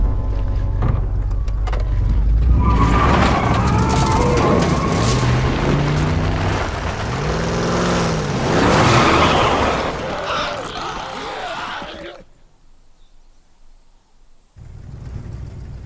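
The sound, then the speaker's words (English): A truck engine rumbles loudly and steadily as the vehicle drives, with rising and falling revs and some muffled shouting, then the noise drops off abruptly before the idling engine returns. “This'll do! Stop! Just keep her running, all right?”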